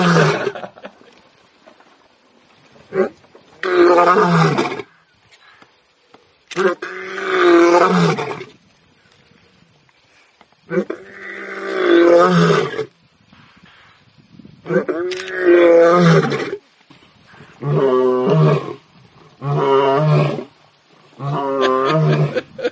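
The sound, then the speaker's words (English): A lion roars loudly in a series of about seven deep, rumbling bursts separated by short pauses, with no talking around them. “So I may find a lion and splice.”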